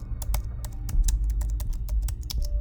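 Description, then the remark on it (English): Rapid, uneven typing on a hidden keyboard of a computer terminal, a quick run of sharp key clicks over a steady low hum, with no voices. “Ooh, a hidden keyboard.”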